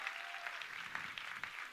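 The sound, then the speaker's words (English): An audience claps steadily for the speaker's assistants, a dense, continuous patter of many hands at a moderate level with no voices breaking through. “Give my wonderful assistants a round of applause.”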